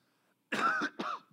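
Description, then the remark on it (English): Two harsh coughs in quick succession, fairly loud, the first longer than the second, with silence before them and no talking. “So the question is this, and thanks for sticking with me with all the coughing.”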